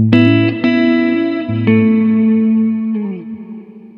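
An effected electric guitar plays a short phrase of a few picked notes that ring out and sustain, with reverb swelling in around the later notes before the sound fades into a washy tail.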